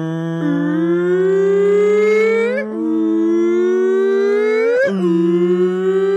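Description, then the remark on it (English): A voice imitates a hurricane siren with a loud, sustained wail that slowly rises in pitch, breaking briefly twice before sliding back into the droning howl. “A hurricane siren goes off.”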